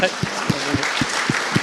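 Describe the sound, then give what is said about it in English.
Audience applause, a dense, steady wash of many hands clapping, with soft low thumps recurring at a regular beat underneath for the short stretch. “I think we need a round of applause at that point.”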